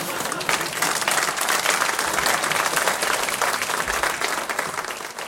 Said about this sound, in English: So how about another round of applause for the chancellor, who's already had a very long day, who's been very generous in extending his day further still.